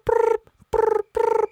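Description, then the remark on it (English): Cicada chirping: three short, buzzy bursts in a steady rhythm, each one rapidly pulsing with a raspy, mid-pitched drone, fairly loud, with brief silences between them and no voices. “Someone's phone's going. And it's not my phone, it's a cicada.”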